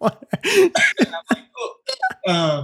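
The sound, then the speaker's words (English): Someone chokes on water, sputtering through a quick run of harsh, irregular coughs and gasps before ending in a longer strained, throaty sound. No clear speech. “As you're like choking on water.”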